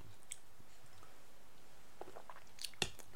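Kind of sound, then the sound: food or drink, sipping coffee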